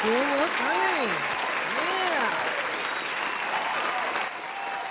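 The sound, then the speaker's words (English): Steady, dense applause during an on-air party show fills the whole five seconds, loud and continuous, with a voice rising and falling over it for the first couple of seconds before it fades slightly at the end. “I'm going to give you and all of them an applause that you all keep up.”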